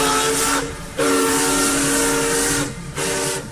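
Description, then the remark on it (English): A steam locomotive whistle blows loud: a short blast, then a long drawn-out note, then another brief toot, with steady hissing steam throughout. “Its unique sound involved a long, drawn-out note, a sound that became his trademark. It was described like the war cry of a Viking.”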